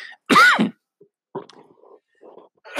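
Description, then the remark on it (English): A single loud cough from someone who is exercising again bursts out, followed by a few softer, rough throaty sounds and breaths before it trails off. No one speaks. “Excuse me, that was a cough because I am exercising again.”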